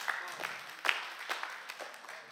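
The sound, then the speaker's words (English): A light, polite golf clap: a handful of soft, scattered hand claps at an uneven pace, crisp but subdued, with no voices over them. “Because I was like, golf clap.”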